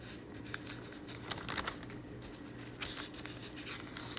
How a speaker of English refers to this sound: Please bear with me a moment. I'm flipping my pages. And yeah, I do have paper Bible. I love turning the pages.